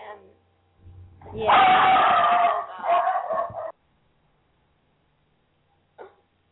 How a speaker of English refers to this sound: If anybody who's watched our videos remembers how every once in a while our dogs just freak out, that would that would be what it sounds like. Yeah. It's only an ankle biter. Why so loud? Small dog syndrome.